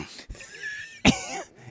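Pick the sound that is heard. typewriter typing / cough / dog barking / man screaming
cough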